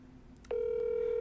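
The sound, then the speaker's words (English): A telephone line tone cuts in abruptly, a steady, clean electronic hum that holds without a break, heard alone over faint background noise, as a phone call rings out unanswered. “Answer the phone.”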